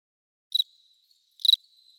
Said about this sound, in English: Yep, crickets.